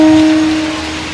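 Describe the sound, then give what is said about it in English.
A large crowd applauds the Vancouver Giants team at home on a Sunday as their season ends, in a dense, steady wash of clapping, while a sustained low tone rings underneath and fades away partway through. “A deserved applause for this Giants team at home on a Sunday.”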